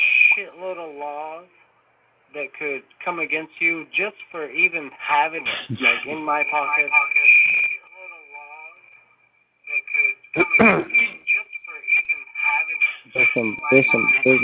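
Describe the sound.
Voices talk on a community phone call over a thin, phone-like line with a hollow, echoing quality, a steady high-pitched whine running underneath and short silent gaps between bursts of speech.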